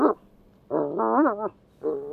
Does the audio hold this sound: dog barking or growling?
yes